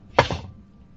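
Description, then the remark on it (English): Many dice are rolled and clatter onto a hard surface: two quick, sharp clacks in rapid succession, then a brief rattling tail that fades out. No voices are heard. “He's rolling a lot of dice back there.”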